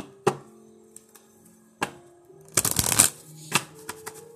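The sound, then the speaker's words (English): Angel Answers oracle cards being shuffled: a few sharp papery slaps, then a dense, fluttering riffle of cards followed by one more crisp snap, with a soft steady tone humming underneath and no talking. “I am going to go ahead and grab the angel answers, and let's see what we need to do moving forward.”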